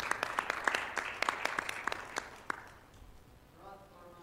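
A round of audience applause, with dense claps and sharp individual hand slaps that thin out and fade after about two and a half seconds, followed by a faint voice starting to speak.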